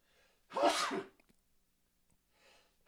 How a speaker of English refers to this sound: I'm gonna sneeze.